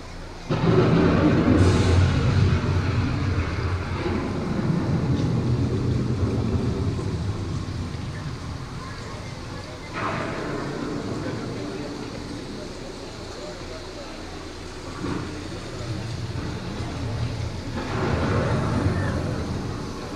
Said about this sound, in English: The approaching storm may seem violent and destructive to us, but to nature, it's a new beginning in the cycle of life.